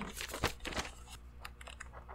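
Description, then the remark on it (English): Paper foley: paper rustles and crinkles in quick, irregular bursts, with a louder crackle early on before softer scattered crinkles continue. No one speaks. “I've got more paper foley if you need it.”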